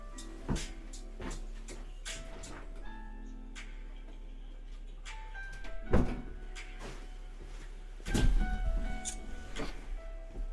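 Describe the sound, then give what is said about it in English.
A door being unlatched and opened to let a dog out: a run of small clicks and ticks, then a louder clunk and a rattling clatter a couple of seconds later, with no one speaking. “I just have to let him out. He's at the door.”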